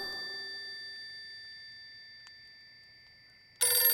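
A telephone bell rings with a bright metallic tone that slowly fades, then a fresh, loud ring bursts in at the end. No one speaks.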